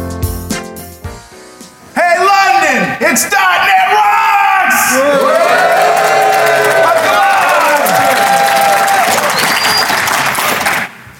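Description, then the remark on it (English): A crowd at the NDC conference in London cheers and applauds loudly and continuously, with whoops and yells rising over steady clapping for about nine seconds after a brief quieter opening. “What an enthusiastic crowd.”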